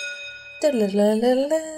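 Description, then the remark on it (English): A short musical transition: a steady held tone rings alone for a moment, then a voice hums or sings a sliding, wavering melody over it, imitating a transition jingle. “Yeah, transition music. Yeah, that's what I was going for.”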